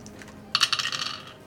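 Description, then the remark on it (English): Dice rattle and clatter across a hard surface in a quick burst of bright, clicking taps that settle over about a second, for a roll of 13 out of 18. No voices, only faint background hum. “I rolled a 13 out of 18, so.”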